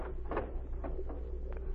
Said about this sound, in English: The door's opening.